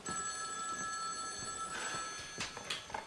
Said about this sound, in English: So she explains that they're getting like constant prank calls all of the time. And then the phone starts ringing again.